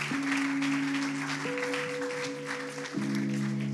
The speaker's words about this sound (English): So let's just lift up a big hand clap of praise to God.